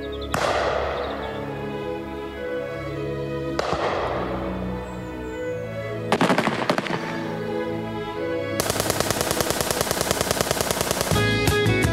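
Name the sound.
gunshots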